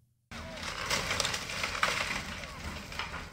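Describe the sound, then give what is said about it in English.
Demolition of the All Saints Way shantytown on a Monday morning: bulldozers rumble low and steady while debris crunches, splinters and cracks, with breaking glass and torn structures, in a dense, continuous, loud clatter with a few sharper breaking snaps. “Monday morning began with the sounds of bulldozers, breaking glass, and torn structures for the residents of the All Saints Way shantytown as the unregulated community's demolition, which began late last year, continued.”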